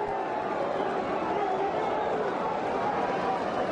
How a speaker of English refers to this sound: And now Nomo has done something else you don't see here. He has the crowd at Coors Field rooting for him.